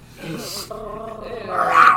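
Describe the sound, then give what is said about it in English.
A person imitates snarling, growling dogs in a scuffle, a rough voiced rumble that swells louder and more strained toward the end, alone for about two seconds. “Fighting over like dogs.”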